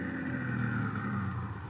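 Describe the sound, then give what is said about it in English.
A car engine rumbles steadily, a low continuous drone with no talking, as the car pulls up and rolls to a halt in front of a house. “But then the time came, and he was pulling his car up in front of the house where he was to meet the man with a foreign accent.”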